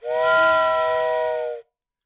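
A single loud, sustained whistle blast with a rich, steam-like harmonic tone and breathy hiss, holding steady for about a second and a half before cutting off abruptly.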